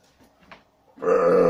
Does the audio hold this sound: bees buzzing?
no